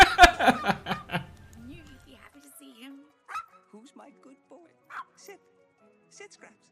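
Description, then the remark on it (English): A burst of rapid, high-pitched puppy barks and yips from the dog Scraps up front, loud, fading into softer whimpers and occasional short yaps. “The puppy.”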